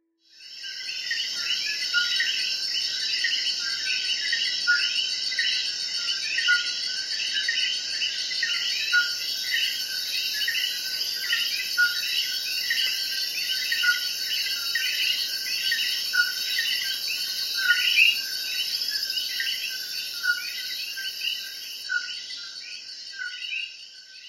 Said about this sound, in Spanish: El sonido de hoy fue el de un animal muy especial llamado el coquí. El coquí es un tipo de rana que vive en países tropicales como Puerto Rico. Es muy pequeño y tiene un color verde brillante.